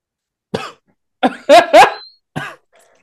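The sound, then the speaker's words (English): A harsh coughing fit of about five strained coughs in irregular bursts, two of them louder with a raspy, pained tone, and no talking. “I can hear the pain just in that one for that first cough.”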